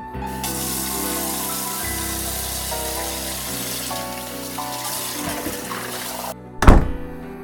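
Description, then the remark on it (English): Warm tap water runs steadily over a bottle for about six seconds, an even rushing stream, then cuts off and is followed by a single sharp thunk. “Hey, can you get the bottle for your sister and run it under the warm water for a minute?”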